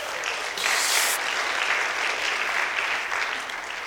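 A crowd claps steadily in a dense, sustained burst of applause for a speaker who has just shared her experience, loud and continuous throughout with no one speaking.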